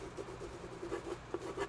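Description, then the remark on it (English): Quick scratching of a pencil moving across paper as someone signs an agreement, a string of short rubbing strokes in an uneven rhythm, with no voices. “No, I just, I need something to sign with. Oh, here you go,”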